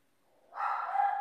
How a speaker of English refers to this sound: My dog's going crazy downstairs. I might have to go deal with that in a minute.